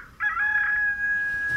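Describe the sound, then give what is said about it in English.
A rooster crows once, a loud, sustained, tonal call that holds steady for over a second before trailing off, with no one speaking. “A good half hour before even God himself was set to awaken, the rooster crowed.”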